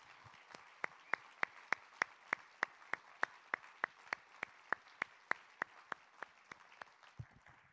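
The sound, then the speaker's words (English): A church audience claps in a steady, even rhythm to thank people who serve in ministry: about two dozen sharp, crisp claps at a brisk, regular pace, with no voices over them. “And I just want to give them a thanks, a round of applause and a thanks for all they do in ministry for us.”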